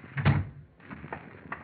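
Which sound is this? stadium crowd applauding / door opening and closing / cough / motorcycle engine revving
door opening and closing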